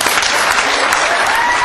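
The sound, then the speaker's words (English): A crowd applauds steadily, dense clapping that fills the whole stretch at a loud, even level with no pauses, brief faint voice traces mixed into the noise. “You can't applaud anymore.”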